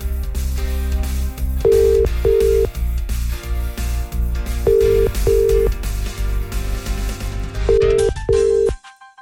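A radio show's wake-up phone call rings out unanswered: three sets of paired ringback tones, evenly spaced and fairly loud, over a steady music bed that cuts off at the end.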